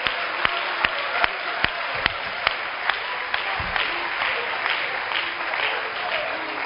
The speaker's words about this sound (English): Oh, clap your hands for the Lord.